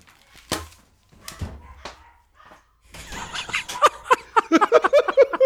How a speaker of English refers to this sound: threw off his headphones and is chasing his dog around the room.